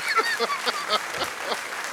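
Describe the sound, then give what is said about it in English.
An audience applauds steadily, many hands clapping in a dense, continuous patter with a few sharper claps standing out, plus faint vocal whoops or cheers mixed in. “One more round of applause for him.”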